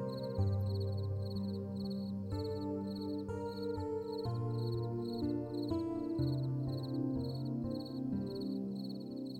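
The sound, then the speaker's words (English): A steady chorus of thousands of crickets chirps in fast, rhythmic pulses throughout, layered over a soft, sustained low musical drone, evoking a calm night outdoors. “You must be surrounded by thousands of crickets because it sounds like a symphony around you.”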